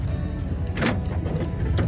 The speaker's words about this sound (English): All right. Garage door down.